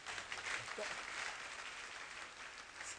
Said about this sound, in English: Well, it's a good place to clap.